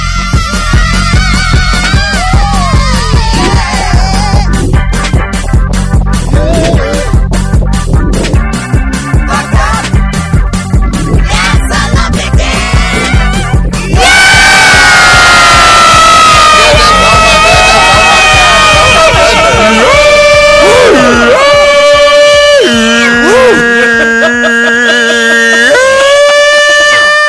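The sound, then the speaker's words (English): A group of voices belts out a frantic cheer chant to open a show, loud and rhythmic at first, then shifting into drawn-out, high-pitched shouted tones that waver and slide. “That's how you start a show off with a crazy Muppets on crack cheer.”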